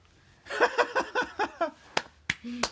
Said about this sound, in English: And obviously I am clapping in a circle because it's a round of applause.